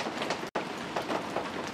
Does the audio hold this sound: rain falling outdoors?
yes